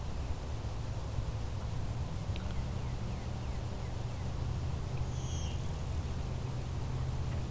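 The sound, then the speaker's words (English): A blue-winged warbler gives one thin, two-part buzzy bee-buzz song, faint, over a steady low rumble of background noise, with a few soft chips scattered earlier, in a shrubby meadow at McMaster Forest in Hamilton, Ontario, in late May. “It's got the Bee Buzz song.”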